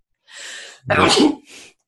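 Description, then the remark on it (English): A single loud sneeze: a breathy inhale, a sharp explosive burst, then a short airy exhale trailing off. No talking. “That sneeze, though. It was legendary.”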